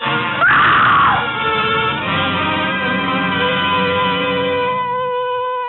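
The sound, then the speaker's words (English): A woman lets out a loud, piercing scream that bursts out sharply and then holds as one long, sustained cry for several seconds, with no talking. “It was a good loud scream.”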